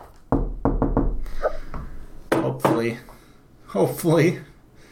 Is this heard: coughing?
no